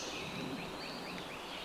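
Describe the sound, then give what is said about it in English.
Faint, high-pitched songbird chirps and short rising notes repeat across a steady hiss of forest background noise during a 10-minute bird point count; birds identified include a redstart, red-eyed vireo, pewee and worm-eating warbler. No voices present. “They have different calls, they have different chip notes, they have different songs.”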